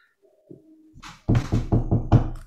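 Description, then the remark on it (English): Knuckles rap on wood five times in quick, even succession, fairly loud, after a brief stretch of faint low rustling. “Knock on wood.”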